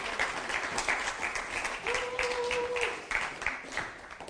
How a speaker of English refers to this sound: So why don't you give him a round of applause?